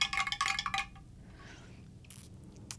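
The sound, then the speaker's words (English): A spoon clinks rapidly against the inside of a glass, stirring a cocktail of keto Gatorade mix with vodka, lemon and lime, for about a second, a bright jangling burst of high tinkling taps, followed by faint quiet sounds and a couple of soft later clicks. “Let me take a sip of this. Stir it first.”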